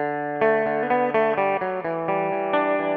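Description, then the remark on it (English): A six-string guitar plays a riff alone: a steady run of bright, ringing notes that change pitch every quarter to half second, held at an even, fairly loud level with no voices. “And here it is on 6th string.”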